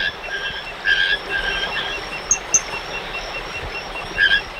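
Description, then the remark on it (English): Tree frogs (Ismohyla calypsa, tiny emerald-colored tree frogs) calling in short, bright chirping bursts that repeat at irregular intervals over a steady hiss of night insects and ambient noise in a moist, mossy old-growth oak cloud forest, with a couple of sharp clicks in between. “spending her days studying the reproductive behavior of Ismohyla calypsa, a tiny tree frog the color of emeralds.”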